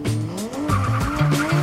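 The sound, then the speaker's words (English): Car tires skid and squeal loudly in several quick, overlapping bursts during stunt driving with advanced driving techniques, a shrill rubbery screech rising and falling while an engine roars. No one speaks. “They learn self-defense and advanced driving techniques.”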